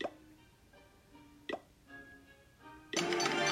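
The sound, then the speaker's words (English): A game-style hammer strike effect as a Town Hall is upgraded to Town Hall 11: two sharp clanks about a second and a half apart, each leaving a short ringing tone, then a sudden loud, sustained crashing burst. No one speaks. “I am going to hit the hammer right now.”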